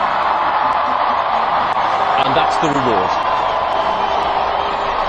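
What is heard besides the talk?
crowd cheering and whooping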